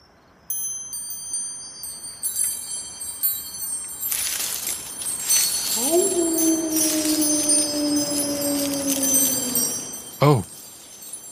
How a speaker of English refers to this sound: Listen to those wind chimes.